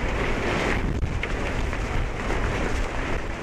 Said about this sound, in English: But... man, it's windy down here, too.